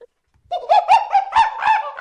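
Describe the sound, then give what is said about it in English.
A person imitates monkey chattering: a quick run of about six loud, high, nasal hooting bursts over roughly a second and a half, with no other talking. “Monkey chattering. That wasn't even one off the soundboard.”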